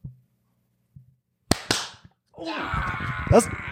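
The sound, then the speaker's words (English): Two sharp, isolated hand claps ring out, followed by a burst of a group of people clapping together in front of microphones held in their laps, a dense, crackling patter with some voices mixed in underneath. “We could probably, we'll clap in front of the mic.”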